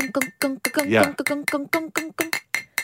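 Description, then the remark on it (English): A metal canister is tapped like a musical instrument: about a dozen quick, clear ringing notes in a steady rhythm, their pitch shifting from strike to strike like a short tune. “Is it a canister or is it a musical instrument? It's both.”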